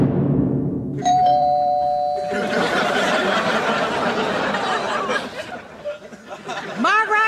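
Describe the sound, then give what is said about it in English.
A doorbell in a TV show scene chimes clearly with a sustained electronic ding-dong tone, then a burst of lively chatter and laughter from several people washes over it, fading toward the end. “Ding dong!”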